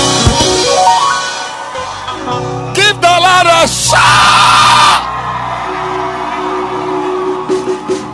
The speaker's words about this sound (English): Oh, your hand clap, your excitement, your I don't know what's going on. Can I hear a shout?